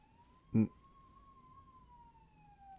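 police car siren

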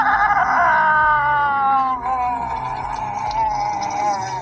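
man screaming in fright

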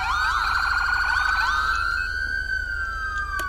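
police car siren

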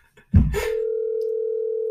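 phone call ringing tone

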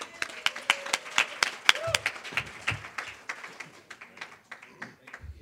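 audience applause and cheering

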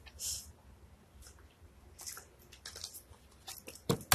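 drinking water

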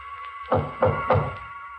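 knocking on a door

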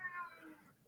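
cat meowing

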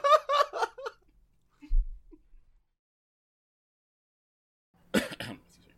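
coughing

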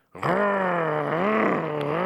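dog growling

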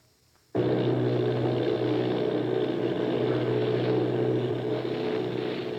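bomber plane engines droning

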